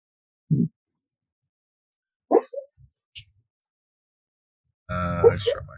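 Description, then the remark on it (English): A female dog barks in her sleep, dreaming: a few soft, muffled woofs and little whimpering yips spaced seconds apart, ending in a louder, drawn-out, tonal bark. “My dog just started barking in her sleep.”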